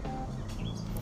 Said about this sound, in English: You can probably hear the birds chirping. I'm outside.